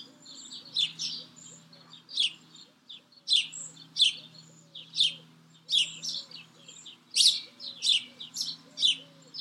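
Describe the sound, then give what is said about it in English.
Birds chirp outdoors in a garden with raised beds in the morning, in quick, bright bursts repeating every second or so, clear, while a softer, lower cooing hums steadily underneath. “I have my coffee here every morning and listen to the birds. Can you hear them?”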